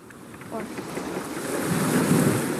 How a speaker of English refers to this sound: Welcome to Annapolis. We are now on a boat dock. As you can hear, there are speedboats rushing past us.